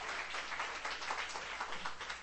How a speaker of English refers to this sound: Let's give them a clap and appreciate them. 再一次为他们热烈的拍一掌，感谢他们好吗？